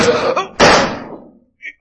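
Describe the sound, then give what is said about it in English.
A man is struck with a pistol: a scuffling impact followed by a second, harder blow that lands with a loud smack and fades out, with a faint brief sound afterward. “Struck him with my pistol.”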